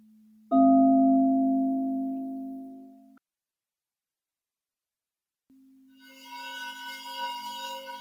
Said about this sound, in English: Listen to the silence in between words or in between the ringing of the bowls.